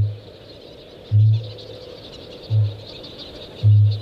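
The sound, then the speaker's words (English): Deep, resonant kākāpō booms, a low-frequency call that attracts females and fills the forest from dusk till dawn, pulse at a slow, steady rhythm, four low thudding notes spaced about a second apart over a soft hiss of night insects and background hum. “make this really low frequency booming noise which travels for quite a long distance and attracts the females.”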